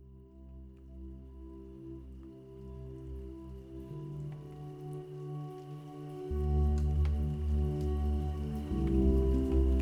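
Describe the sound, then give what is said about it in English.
Gentle raindrops patter softly and steadily over a low, humming drone that shifts pitch a few times and swells slightly louder toward the end. No voices. “Tonight, let the rhythmic sounds of gentle raindrops lull you into deep, peaceful sleep.”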